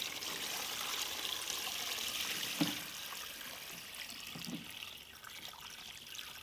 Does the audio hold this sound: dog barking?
no